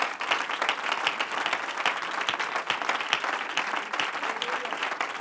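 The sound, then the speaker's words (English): An audience in a church sanctuary claps their hands together in a sustained burst of applause as they are being seated, many hands at once in a dense, steady patter without any talking. “If you're going to help me preach in the house, clap your hands one more time as you're being seated.”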